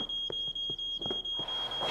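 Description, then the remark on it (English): A kitchen smoke alarm sounds a piercing, high-pitched tone that holds steady throughout, with softer rhythmic knocks underneath and no talking. “It's just a smoke alarm in the kitchen.”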